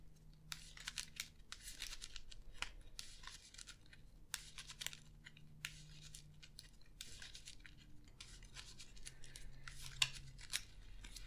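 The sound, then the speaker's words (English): Playing cards being shuffled as a Shriveling card is shuffled into a deck during a card game: repeated crisp, papery riffling bursts with short pauses between them, fairly quiet and with no talking. “Choose and shuffle a non-story asset you control into your deck and discard the top 3 cards of your deck.”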